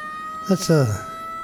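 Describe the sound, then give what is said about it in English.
A short, siren-like sound effect wail with a falling pitch, most likely a voice imitating a siren. Two quick bursts stand out clear over a faint steady background tone. “Do you want some sirens?”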